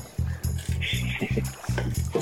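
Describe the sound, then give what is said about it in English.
A knife rocks steadily on a cutting board, mincing peeled garlic cloves in a quick, even rhythm of about nine dull thuds, with faint clicks between strokes. “So I got these garlics peeled, and now I'm going to mince them with rocking motions like a boat at sea.”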